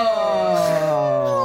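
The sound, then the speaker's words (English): Someone imitates an owl hoot with a single long, steady "ooh" that slowly slides a little lower in pitch. The sound is fairly loud and has no other talking around it. “The owl goes, ooh.”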